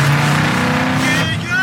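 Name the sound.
car engine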